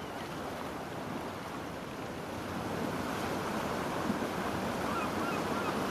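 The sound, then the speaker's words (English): Steady, broad rush of surf washing onto a beach, a continuous roar of breaking waves that swells slightly louder partway through, with no voices present. “And just look at the big ocean and the beautiful blue sky.”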